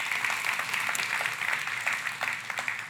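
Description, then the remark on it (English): An audience claps together to give the Lord a hand clap, a dense, steady burst of applause, many hands overlapping into a continuous crackling wash that holds at an even level for the whole stretch, with no voices. “Can we give the Lord a hand clap? Come on, can we just do that?”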